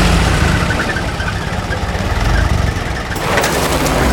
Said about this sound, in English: Thankfully, I find them, jam them into the ignition, and the truck roars to life.